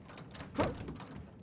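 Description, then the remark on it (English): A stuck crew cabin door is yanked once and doesn't give, making a short clunk and rattle against a steady low background hum. “No, sir, just that the door's stuck. Happens sometimes when it's cold. The doors sometimes freeze over.”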